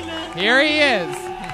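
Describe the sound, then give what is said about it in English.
A single voice imitates a wildly cheering crowd with a loud, drawn-out roar that swells in pitch and then falls, lasting just over a second. “The crowd goes wild.”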